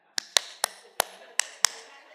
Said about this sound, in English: I know you're here because I hear you clapping. And the worship team is leading, and it's like, I don't know when to clap.